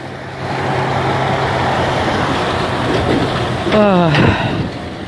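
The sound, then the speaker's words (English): A truck rolls past with a steady, loud rumble of engine and road noise, then a whining tone drops sharply in pitch as it goes by near the end. “I'm gonna wait till the truck passes so I can jump.”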